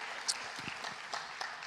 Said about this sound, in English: Oh, round of applause, okay.